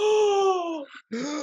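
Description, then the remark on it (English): A single voice lets out a drawn-out, falling "ahh" and a breathy catch, then a short pause before another vocal burst, imitating a shocked audience's gasp. Fairly loud. “The whole congregation gasps as they see Shrek.”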